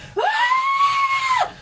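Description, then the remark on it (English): A player performs a single sustained, high-pitched desperate scream lasting over a second, rising sharply at the start and cutting off abruptly. Loud, with no other sounds around it. “And as soon as I see that Czar has backed up enough, I'm creating a sphere around me of just the sound of my desperate scream.”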